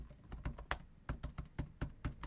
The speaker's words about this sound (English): Yep, this keyboard is definitely working.